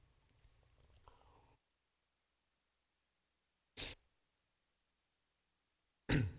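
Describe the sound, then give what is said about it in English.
Two sharp coughs from a person with a lingering cough, about two seconds apart, each a short loud burst, following a moment of faint low rustling and then silence; no one speaks. “My cough's still lingering a little bit.”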